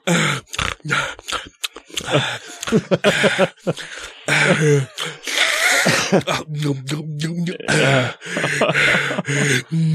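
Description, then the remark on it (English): A voice imitates a man eating at his desk with his mouth open: loud, open-mouthed chewing, with wet smacking and slurping noises in quick, irregular bursts that continue for several seconds, broken by grunts and breathy gasps. “He's always breathing through his mouth and he eats at his desk with his mouth open the whole time going.”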